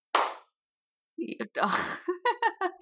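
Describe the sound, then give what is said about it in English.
A single sharp hand clap rings out with a short decaying tail, followed by about a second of silence before people start talking. “Are we gonna clap? Yeah, we can clap.”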